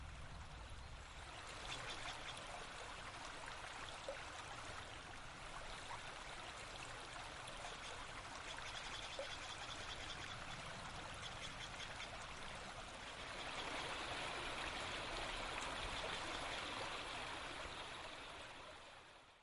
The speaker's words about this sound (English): We leave you this Sunday in a redwood forest and creek in Los Gatos, California. A quiet home for the humble newt.